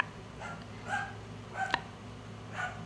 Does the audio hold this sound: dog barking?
yes